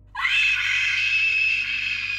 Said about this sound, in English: The woman on the ground, who had come to her senses, screamed in horror at the sight of the entity that stood over her.